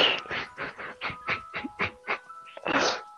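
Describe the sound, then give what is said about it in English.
A cuckoo clock and five other clocks in a house go off at once: a quick run of about ten bright, evenly spaced strikes over sustained ringing chime tones, ending in one louder, fuller burst. “So, congratulations, you've now enjoyed my cuckoo clock. We'll as well as five other clocks.”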